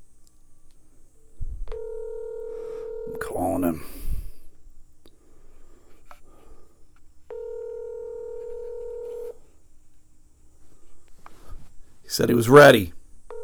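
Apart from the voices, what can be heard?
telephone dialing tones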